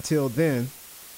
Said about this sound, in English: And I'm going to see what I can do about this hiss, because I hear it myself in the headphones.